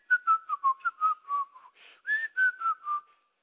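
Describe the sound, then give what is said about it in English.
A person whistles a light, wandering tune, short notes rising and dipping in a casual melody, clear with no talking, lasting a few seconds before trailing off. “So he gets back, he's hidden now the spoils in his house, he goes in and he's whistling.”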